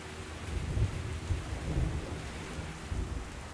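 Steady rain hisses throughout while low thunder rolls and rumbles in several soft swells, with no voices. The storm stays fairly quiet and even.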